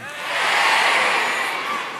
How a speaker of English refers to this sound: If you can hear me, say hey.